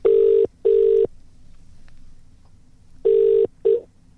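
A phone line rings out in the classic double-ring pattern as a call is put through: two steady, buzzy mid-pitched tone bursts, a quiet pause with faint low hum, then another pair, the last one cut short.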